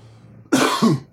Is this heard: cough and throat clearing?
yes